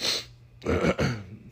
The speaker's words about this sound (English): I had to clear my voice. Clear my throat again.